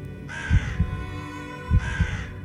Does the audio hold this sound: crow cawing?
yes